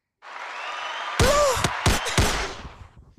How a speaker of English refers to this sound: I hate those applause and the gun. I feel like I'm just murking a crowd or some shit.